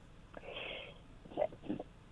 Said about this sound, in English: excuse me. I don't think I've ever sneezed in an interview with you.